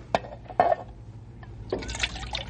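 Water sloshes and pours from a water bag into a metal pan to wet the mouths of horses and burros, starting with a couple of short splashes and then a steadier, brighter stream near the end, fairly quiet.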